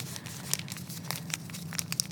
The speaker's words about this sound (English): So okay. I have this is a Tampax Sport, because I didn't want to buy two kinds of tampons. So here's a normal tampon wrapper.